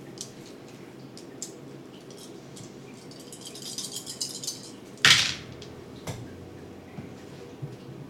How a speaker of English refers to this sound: Getting all the dice out of the bag.